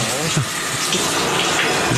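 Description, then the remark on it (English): Cold shower water runs in a steady, full hiss that stays constant throughout as a man stands in it wearing swim trunks, with faint low murmurs underneath but no clear speech. “Now he's in the shower in his trunks.”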